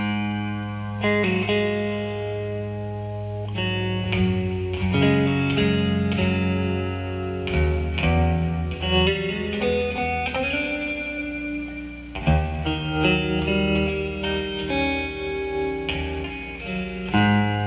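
A blues song opens on distorted, effects-laden electric guitar: sustained low notes under ringing chords and bent lead phrases, steady and loud throughout, with no singing yet.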